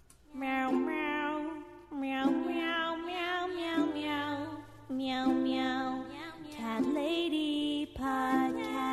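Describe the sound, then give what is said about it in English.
In the outro of a song, several voices sing a repeated meow syllable in random places in short, close phrases, each rising and falling in pitch over a steady backing, giving a loud, layered, slightly off-key feel with harmonies not matching. “They're just like saying meow in random places.”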